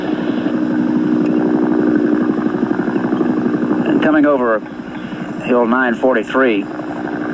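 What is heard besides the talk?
helicopter flying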